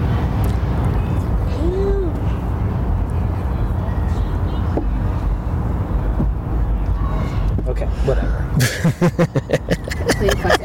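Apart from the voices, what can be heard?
airplane flying overhead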